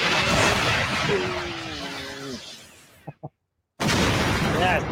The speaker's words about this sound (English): And then we get that lovely animated series explosions. Oh yeah! Here we go.